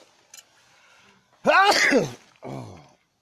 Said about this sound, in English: You're trying to sneeze. Excuse me.